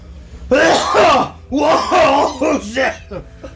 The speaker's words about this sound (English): Can I just say that for all this coughing, he smoked half a joint? No, it's that corn chip. That goddamn corn chip.